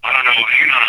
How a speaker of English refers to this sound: your phone's getting weird feedback. Yeah. Let me I don't know. You're not on speaker, are you?